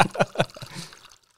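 Liquid Death sparkling water pours into a drink with lime juice in a brief burst of glugs, a few quick splashy pulses followed by a soft fizzing hiss that fades within about a second.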